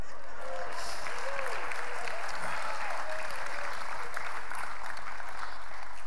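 An audience applauds steadily, a dense wash of many hands clapping at an even, moderate level, with faint voices murmuring underneath.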